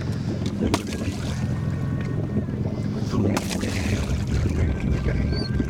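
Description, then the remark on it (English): Water splashes from strokes of an extendable oar for a dog that chases water splashes, with two sharper bursts standing out over steady rushing water and wind noise from a small boat out on the water. “So he goes after water splashes.”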